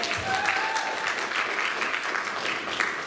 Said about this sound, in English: You guys, give another round of applause.